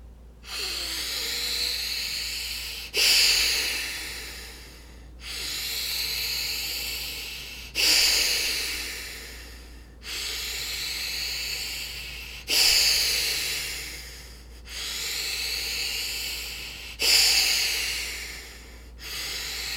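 Slow, forceful breaths through the nose during a breathing exercise repeat in a steady cycle, each strong airy exhale swelling then fading, about eight breaths in twenty seconds, clear with no talking.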